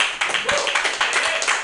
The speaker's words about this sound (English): Let's give a round of applause for this mic, shall we? For all your comics.